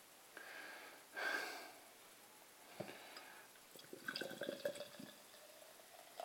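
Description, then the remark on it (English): Extremely fizzy beer poured from a 330ml can into a glass foams and hisses, with a brief rushing pour, then scattered drips and crackling bubbles spilling over the top, fairly quiet and with no voices. “Wow, it's bubbling out the top again.”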